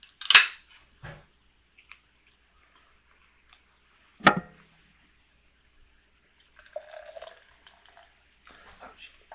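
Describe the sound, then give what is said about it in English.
Beer pours from a crowler can into a glass: two sharp hissing bursts a few seconds apart, followed by a soft, fizzy gurgle of liquid and foam running into the glass, the beer sticking to the side of the can. “I don't know how to pour crowler.”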